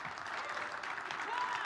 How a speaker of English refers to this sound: Yeah, we can give him a round of applause.